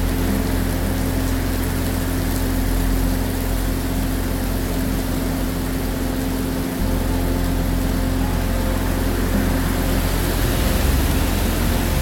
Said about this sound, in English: Udine town centre is about half a mile from the station itself, but with this downpour, which really is torrential, I don't think I'm going to be seeing much of it today.